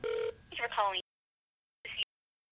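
telephone ringing

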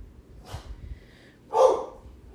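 dog barking

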